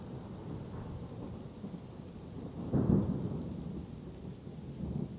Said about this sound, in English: you look over towards where the thunder is coming from.